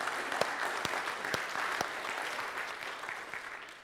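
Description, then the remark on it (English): An audience applauds a baptism with steady, dense clapping, a few sharp louder claps standing out early on, the sound gradually tapering off toward the end. “So let's give a big round of applause for New Life.”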